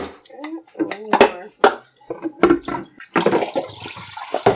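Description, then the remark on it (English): Water sloshes and splashes inside a small film developing tank during the sixth wash, in short bursts, growing louder and more continuous toward the end, with a person talking at the start. “I am on my sixth wash right now.”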